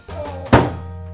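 A single loud, heavy door slam lands abruptly with a booming thud and a short ringing decay, over a steady low hum; no one speaks.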